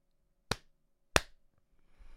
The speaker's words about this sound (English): Okay, so let me just clap in.